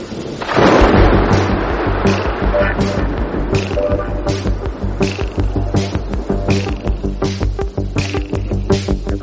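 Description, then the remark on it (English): A loud crack of thunder bursts in near the start and rolls into a low, heavy rumble that carries on beneath a steady tonal backdrop, with occasional crackles throughout and no voices. “My goodness me, weather warnings for Storm Anthony.”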